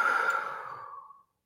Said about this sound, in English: Breathing in through your nose. Breathing out through your mouth. One more time, in through your nose. And out through your mouth.